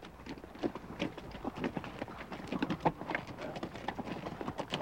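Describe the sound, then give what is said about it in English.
Hooves clip-clop steadily along a dirt canyon trail, a brisk, slightly uneven rhythm of many hoof strikes, moderately loud, as mules or horses with a wrangler walk past hikers. “When you meet mules or horses, stop and follow the wrangler's instructions.”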